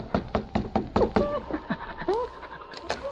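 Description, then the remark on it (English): A rapid series of about eight firm, loud knocks by two Mounties on the wooden door of a boarding house, followed by a few scattered softer taps as faint voice-like sounds murmur in the background. “the two Mounties knocked on the door of Hazel's boarding house”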